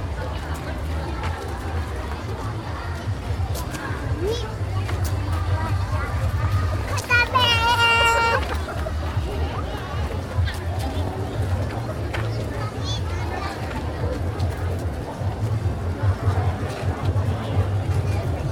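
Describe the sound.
A busy crowd at Ueno Zoo in Tokyo, Japan, murmurs steadily throughout, with children's voices chattering and calling out; a brief high-pitched child's shriek or squeal rises above the babble midway.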